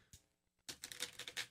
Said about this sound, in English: We interrupt this game for a quick reshuffling of the cards.